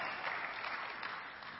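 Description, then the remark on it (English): A crowd applauds steadily for a moment, a dense wash of many hands clapping at once that holds an even level throughout, with no talking over it. “Yeah, you can clap for that.”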